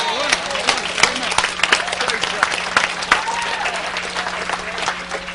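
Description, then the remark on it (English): An audience bursts into sustained applause as a clap offering to God, dense overlapping claps forming a steady roar for several seconds, with scattered voices and cheers mixed underneath. “Give God a big clap offering right there.”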